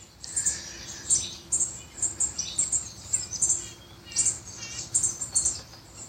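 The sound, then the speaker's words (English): Small songbirds, warblers and nuthatches, chirp and twitter back and forth in quick, high bursts, several calls overlapping, under a great white pine over a quiet outdoor background. “Giving thanks to the little warblers here, the nuthatches, and the hummingbirds.”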